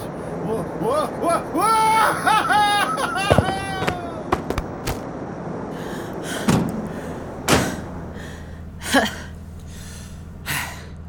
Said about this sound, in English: Right. Because, see, I knocked him out of the truck with an Iberian ham.